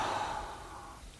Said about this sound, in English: And a yawn.